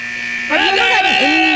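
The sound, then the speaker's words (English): A timer goes off with a steady electronic buzzing tone that shifts after half a second into a louder, warbling, wavering sound that continues to the end. “Timer went off just like that.”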